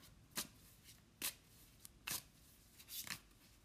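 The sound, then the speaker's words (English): A deck of cards being shuffled right in front of the microphone before drawing cards for a weekend energy forecast reading, with about four crisp, riffling bursts spaced roughly a second apart, each a sharp papery flutter, and no voices. “I'm shuffling right in front of the microphone.”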